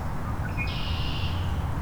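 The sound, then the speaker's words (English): White-throated sparrow seep calls from right overhead: a brief high, thin note followed by a longer, drawn-out sibilant tone, faint against a steady low rumble of background noise. “White-throated sparrow right above me. Pretty annoyed.”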